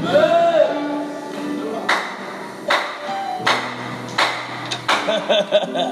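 Loud, sharp claps ring out in an uneven rhythm, a few spaced hits at first, then quicker ones toward the end, over a faint sustained musical hum. Audience members clapping during a sermon about communion.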